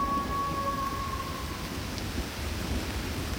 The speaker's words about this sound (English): Thunder and lightning.